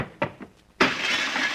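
A few soft thumps, then a sudden loud crash of glass as someone smashes through a window, followed by a bright, sustained clatter of shattering and falling shards.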